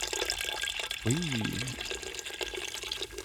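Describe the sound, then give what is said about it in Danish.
Two litres of Danish sparkling water pour steadily into a punch bowl of punch already holding white wine, a dense bubbling, fizzing hiss running the whole time, with a brief voiced murmur near the middle. “Nu kommer der dansk vand i.”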